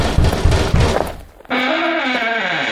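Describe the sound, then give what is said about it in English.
Three heavy, dull knocks on a door in quick succession, followed after a short pause by a long, wavering creak that holds steady and loud. “The stock market's at my door knocking again.”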